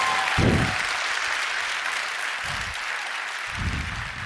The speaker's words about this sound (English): If we're going to clap, we all do it together. Because we're not Democrats at the State of the Union. Like, there's unity in this house. Can we try that again? Can we all clap together?